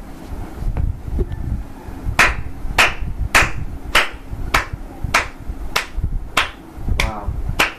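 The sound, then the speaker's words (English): Steady, rhythmic clapping: about a dozen sharp, evenly spaced claps in slow unison, over a low rumbling background hum, with no talking. “Oh, should I tell you to clap?”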